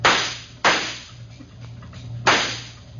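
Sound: gunshots being fired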